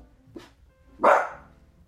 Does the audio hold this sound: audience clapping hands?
no